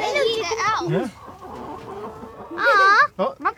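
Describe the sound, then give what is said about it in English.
Chickens cluck loudly in two bursts, a run of warbling clucks at the start and another sharper flurry near the end, with a low murmur of background noise between. “Okay, so this is us at the chickens now.”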